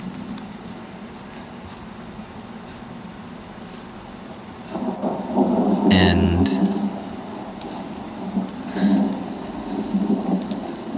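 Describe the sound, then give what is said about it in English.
Soft, steady hiss of light drizzle in a rainforest runs throughout, with a low rumble of thunder in the distance swelling midway and a fainter roll later; a voice briefly speaks. “There's a light drizzle coming down off in the distance. You can hear some thunder.”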